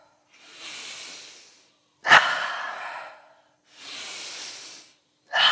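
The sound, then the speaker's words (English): Deep, rhythmic breathing during a breathwork session: long airy inhales alternate with sharper, louder exhales that start abruptly, repeating in a steady cycle with no talking. “Continue breathing deeper and deeper.”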